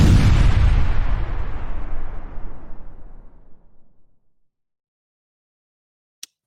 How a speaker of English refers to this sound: I'm doing great, and I love that explosion that starts everything up.